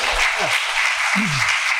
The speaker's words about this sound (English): Can we get a round of applause for the man's beard?